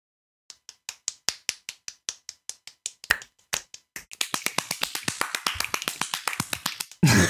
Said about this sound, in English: Why is there so much reverb on that clap? I don't know. Yo, my claps are bombastic, you know what I'm saying?